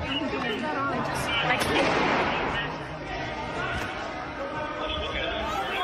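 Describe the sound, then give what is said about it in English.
A single sharp gunshot, a round fired by Lieutenant Michael Byrd inside the Capitol building, cracks out amid the constant roar of a large, agitated crowd shouting and clamoring indoors, the noise continuing unbroken around it. “It is at this moment that the only firearm to be discharged inside the Capitol that day can be loudly heard.”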